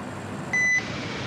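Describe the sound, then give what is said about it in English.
Steady mechanical hum of an air conditioning compressor running throughout, constant and moderately loud, with a single short electronic beep partway through. “You've been hearing air conditioning compressors.”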